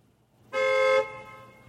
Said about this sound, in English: I think that horn was not even a real horn. It's had echo in it, that horn. You think that's the ghost's car? Let me hear that.